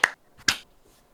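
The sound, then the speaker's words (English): Two sharp, bright hand claps about half a second apart, made to sync audio after a 3, 2, 1 countdown, each a crisp snap that dies away almost instantly, with near silence around them and no voices. “Clap sync. 3, 2, 1.”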